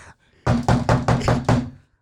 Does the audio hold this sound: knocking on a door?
yes